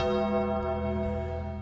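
A gong rings out loud, its deep metallic tone sustaining steadily with a rich shimmer of overtones throughout the short moment, with no voices present.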